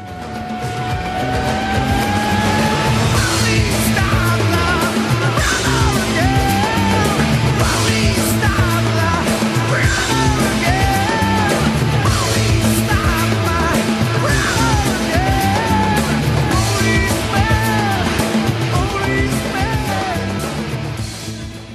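A loud, dense rock track in which a singer screams a chorus line, his voice swooping high and dropping back down over a driving full band, with no talking throughout.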